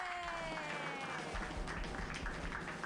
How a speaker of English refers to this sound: Cool. Everybody clap wildly.